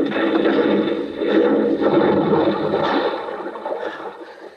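A car rolls into a water-filled irrigation ditch by a canal bank and sinks, with steady gurgling and sloshing water that churns for several seconds before easing off slightly at the end.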